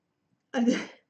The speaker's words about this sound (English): I'm gonna sneeze.